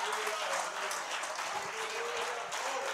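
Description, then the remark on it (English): An audience claps their hands steadily, a dense, continuous patter of many hands that holds at a fairly even level throughout, with a faint sustained tone underneath. “Let's clap our hands unto the Lord and magnify.”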